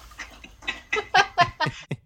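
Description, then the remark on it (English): A dog laps water in a quick, steady rhythm, about eight wet slurps in two seconds, each a short splashy burst that grows louder toward the end, with no talking. “The water that you're hearing is our dog slurping.”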